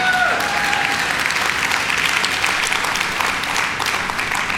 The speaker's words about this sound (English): And I think to myself, my goodness, as a golf clap if I have ever heard one.